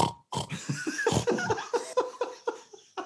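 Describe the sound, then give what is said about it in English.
A voice imitates a pig, producing a rapid series of loud grunts and snorts in a steady rhythm, edging into laughter-like bursts. “Yeah, I'm going to do a pig.”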